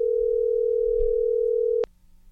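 A steady, loud telephone dial tone hums for nearly two seconds, then cuts off abruptly with a sharp click as the call connects, leaving a quiet line.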